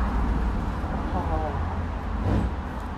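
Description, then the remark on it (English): A car engine gives one short rev, a brief low roar swelling out of steady rumbling road noise, with indistinct voices murmuring underneath. “Oh, revved it for you, buddy.”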